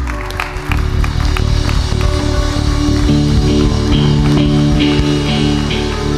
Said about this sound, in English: Hey, why don't we give him a massive clap as he comes up.